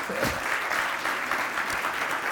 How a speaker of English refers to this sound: All right, come on, give me a hand clap.